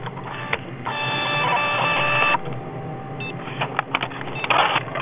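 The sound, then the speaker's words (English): A fax machine whirs and clatters as it receives and prints a fax, a steady mechanical buzz of the print head with brief clicks and a short electronic blip midway, moderately loud with no talking. “He's sending me a fax.”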